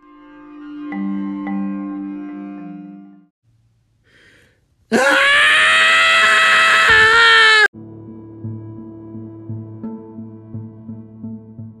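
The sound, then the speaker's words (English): Zombies let out a loud, harsh, strained scream lasting a few seconds, set between quieter sustained tonal sounds before and after, with no talking. “Is that the scream of love?”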